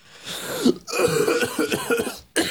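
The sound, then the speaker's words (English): A person who is sick coughs repeatedly, a short burst followed by a longer run of harsh, raspy coughs with a brief pause before a final cough. “I'm actually coughing.”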